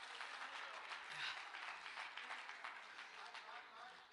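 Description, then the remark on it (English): An audience claps their hands in thanks to God in a dense, steady wash of applause that holds at a fairly even loudness for several seconds, with no voices standing out above it. “Come on, clap your hands tonight if you're thankful to know you serve a God in control.”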